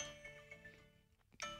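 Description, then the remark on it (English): A phone reminder chime plays, a soft, bright, bell-like tone that rings and fades, then a second chime sounds just as it dies away. No one speaks. “Is that your meditation reminder?”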